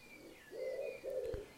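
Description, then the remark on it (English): Birds call outdoors: two soft, low cooing phrases in quick succession over faint, thin higher chirps in the background, fairly quiet, with no voices. “the sun on your skin, nice and warm, the smell of the grass and the sound of the birds and the wind in the trees.”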